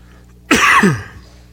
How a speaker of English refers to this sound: I wish my wife wasn't coughing. It's making me want to cough.